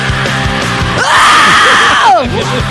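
A loud, sustained human scream rises sharply, holds at a high pitch for about a second, then drops away, sitting over a busy band-music background.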